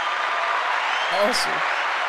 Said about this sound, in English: Clap on that.